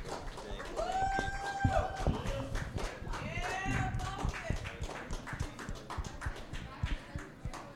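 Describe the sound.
An audience applauds a volunteer with dense, rapid clapping that stays loud and steady. Whoops and cheering voices rise over it early on, then the clapping thins slightly toward the end.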